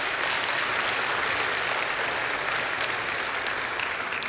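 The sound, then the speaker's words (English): Sustained applause from a church audience for everyone who helped make the Easter services happen, a dense, steady wash of clapping that holds at an even level for several seconds with no voices standing out. “Can we give a round of applause for everyone who helped make it happen?”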